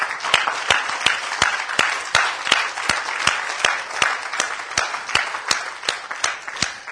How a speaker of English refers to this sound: So let's just stand together, if we will. And again, let's give God a hand clap of praise, saints.